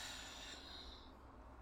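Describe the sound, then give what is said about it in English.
A single soft, breathy exhale through the nose during a guided breathing practice, a hissy rush of air that tapers off after about a second. Quiet, with no talking. “Inhale and release.”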